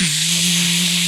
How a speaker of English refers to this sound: Do you guys think it would be cool if my guitar sounded like a swarm of bees? Wouldn't that be cool? Man. Let me hit this pedal.